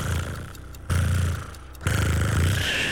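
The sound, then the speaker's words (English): A voice imitates the purr of a cat being stroked: a low, steady rattling rumble in three long breaths, each pause followed by a stronger stretch of buzzing. “A purring? Yeah. That, yeah. Close. Come on. Purring.”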